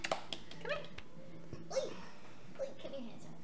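A cat named Blueberry makes several short, faint chirping meows scattered across a few seconds, quiet against a soft background hiss.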